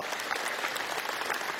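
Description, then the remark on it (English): A church audience claps steadily, applauding God for over $1.1 million raised in 2023: a dense, even wash of many hands applauding at a fairly loud level, with no voices standing out above it. “Can we give God a round of applause for that?”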